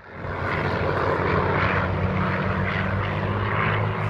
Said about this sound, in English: Sunday morning, Pearl Harbor, Hawaii. Japanese planes are spotted on the horizon.